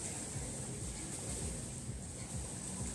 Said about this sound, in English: Can y'all hear that? That's water splashing up against the shore.